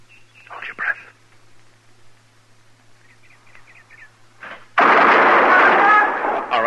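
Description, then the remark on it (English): After a tense, quiet stretch with faint murmurs and small chirping sounds, a sudden loud burst of gunfire from a duel erupts and rings out, filling the last couple of seconds. “And then count to yourself. One, two, three. And then fire.”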